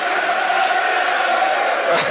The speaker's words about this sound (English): Ironic cheers for the first shot on goal by Swindon Burn the whole game. A difficult chance, in all fairness, despite the piss taking.